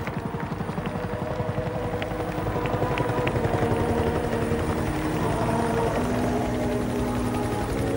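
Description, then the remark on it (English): A helicopter coming down to land beside a house, its rotor thudding in a rapid, steady chop over a deep engine roar that swells slightly louder as it nears. No one speaks. “See helicopters coming down, and they landed just right beside the house.”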